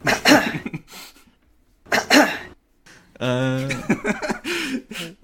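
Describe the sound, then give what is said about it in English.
A man makes a couple of harsh, raspy throat-clearing bursts spaced apart, followed by a longer voiced, gravelly grunt, all fairly loud with no clear speech. “clearing his throat.”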